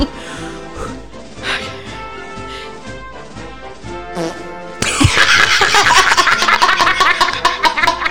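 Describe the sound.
A mouth-blown fake fart: a reedy, whiny tone for several seconds, then a sudden loud, wet, sputtering blast that buzzes roughly until the end.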